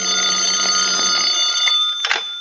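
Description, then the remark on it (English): A telephone on a night table rings at about 1 o'clock in the morning, insistently, in a continuous, shrill metallic trill, loud and steady for about two seconds before cutting off with a brief clatter. “Until about 1 o'clock in the morning when the telephone started having hysterics on my night table.”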